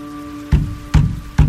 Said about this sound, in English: I thumped on the frame and waited.